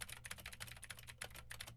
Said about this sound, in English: Now I am typing on a keyboard with Gateron Blue switches to see how much of my voice versus how much of the keyboard it picks up.